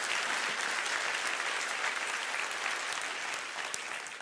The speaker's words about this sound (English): Clap your hands all over the house and praise him.